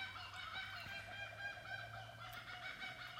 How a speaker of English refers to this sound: Listen to those birds. They think this is funny.